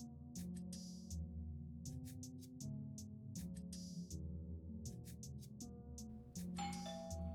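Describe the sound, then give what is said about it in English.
A doorbell chimes over and over, its ringing melodic ding-dong tones repeating in a steady pattern about six times, loud and sustained, with a brief burst of noise near the end. “Who's ringing us at this hour?”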